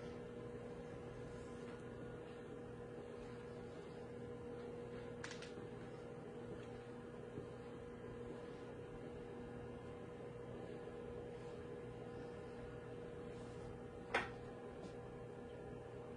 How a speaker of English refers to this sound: All right, just a few more minutes in the microwave.